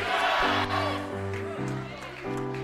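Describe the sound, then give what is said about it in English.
An audience shouts and cheers, called on to shout Jesus, in a dense, continuous roar, layered over sustained chords that shift a few times, steady and loud throughout without a break. “You better not stop shouting.”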